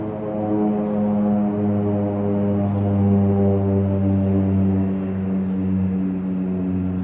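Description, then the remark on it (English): A propeller airplane that has been flying around for about two hours drones steadily, its low, buzzing engine hum holding an even pitch and loudness throughout, with no voices. “This airplane has been flying around for like the last 2 hours.”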